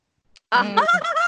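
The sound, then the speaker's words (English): A chicken clucks loudly, a short run of throaty, warbling calls lasting under a second after a brief faint sound, with no one talking. “I'm over the chickens.”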